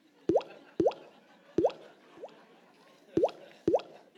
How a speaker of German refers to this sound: Und dann kommen die ersten Tröpfchen.